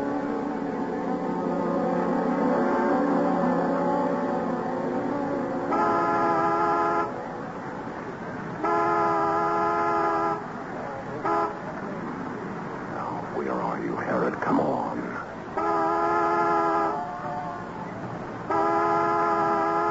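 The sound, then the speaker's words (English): A car horn honks in a series of about four loud, sustained blasts, each lasting a second or more with short pauses between, over a background of muffled voices and rumbling noise. “And if one of us is late, honk the horn as a reminder.”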